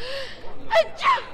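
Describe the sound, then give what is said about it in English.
A sneeze: a sharp, breathy burst followed quickly by a second, louder noisy blast, with no talking. “I only said Gesundheit.”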